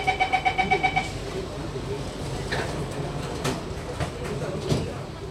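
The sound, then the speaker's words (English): Metro train doors close behind a quick run of about eight bright electronic warning beeps, then a steady low rumble and hiss builds as the train departs, with occasional light clatter. “Doors are closing.”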